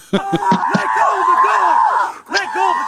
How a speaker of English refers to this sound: If anybody don't know, that screaming sound is what you always hear once the dog done latched on to bad guy.